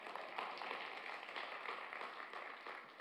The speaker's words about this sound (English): Now you applaud God.